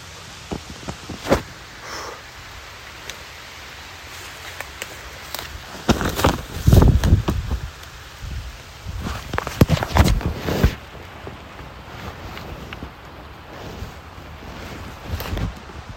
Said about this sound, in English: You can just hear the rain starting to really come down hard. And I hope the audio quality is okay, you know, coming through, you guys listening.